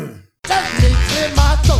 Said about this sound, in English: Oh, he's got to clear his throat. I've got to clear my throat.